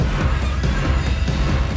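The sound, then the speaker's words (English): The door handle of an old beat-up Chevy pickup truck is yanked and rattled repeatedly, producing a dense run of metallic clunks and scrapes with no pauses and no voices. “Rachel tries to open the car door.”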